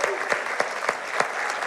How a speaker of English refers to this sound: Would you give your pastors a round of applause?